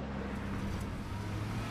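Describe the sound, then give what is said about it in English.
A car speeds off in pursuit of a woman, with a steady engine roar and broad road rumble that holds an even loudness throughout the short stretch, with no voices. “I know we need to catch her, but speeding is not the way to do it.”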